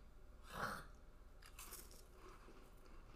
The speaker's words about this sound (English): Oh, the crack is too dry. They're chewing.